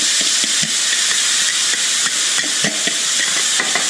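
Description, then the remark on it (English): Sweet chili sauce is poured over cooked chicken in a hot frying pan with a loud, steady sizzling hiss, broken by scattered crackles and sharp pops throughout, with no one speaking. “Now, to that, we're going to add our sauce. So just pour it into the pan.”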